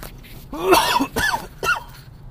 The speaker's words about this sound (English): I see him coughing again. I blame the weather. Change of it. And the fact that I'm so mucusy.